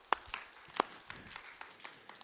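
audience round of applause

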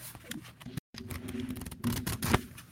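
shuffling playing cards

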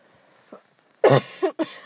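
cough

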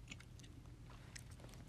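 people chewing food

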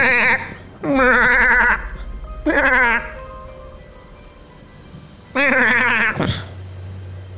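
goats bleating

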